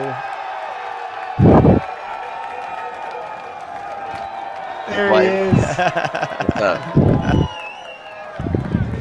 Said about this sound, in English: Yeah, I feel like that's the extended cheer. It was. Since it's been a while since I opened up this program, I don't have the slider to lower the volume, so I had to let it ride out the whole time, that one.